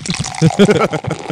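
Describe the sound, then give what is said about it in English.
Beer pours in a steady liquid rush beneath people talking, the fizzy splash running through the whole short moment. “Oh, I thought he was going to go for the full pour.”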